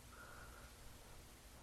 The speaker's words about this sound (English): You may be grateful to hear the gentle hum of the AC.